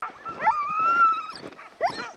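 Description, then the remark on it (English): An excited male sled dog whines in a long, high, wavering whimper while a harness is being put on him. A couple of short sharp yips come at the start and end, with no talking. “He's pretty excited, of course.”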